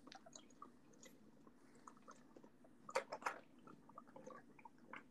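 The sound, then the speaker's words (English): Quiet sounds of someone drinking water, with soft wet mouth clicks and a couple of louder gulping swallows about midway, and no talking. “Give me a chance to drink some water, too.”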